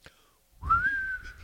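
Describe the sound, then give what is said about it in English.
A person whistles one short, clear note that slides up and then holds steady for under a second, fairly loud over a low background rumble. “Not making bird noises anymore or whistling on these airwaves.”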